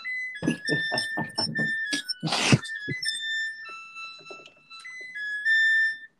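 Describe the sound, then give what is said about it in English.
A Samsung washing machine's end-of-cycle chime, signalling the laundry is done, plays a steady electronic tune of held notes that step between pitches, with a burst of clattering thumps and rustling over the first few seconds. “You know, there's actually one where the chime goes a little bit longer, and at the very end, it goes da da da da da da.”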